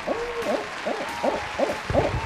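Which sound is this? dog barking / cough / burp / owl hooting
owl hooting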